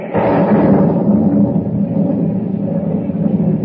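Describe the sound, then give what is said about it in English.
A loud crack of thunder from a lightning bolt in the darkness over a ship's deck bursts out and rolls into a deep, sustained rumble that fills the whole few seconds without fading much. No voices are heard. “As he reaches the deck, a bolt of lightning momentarily cleaves the darkness, and he notices Hans standing at the rail.”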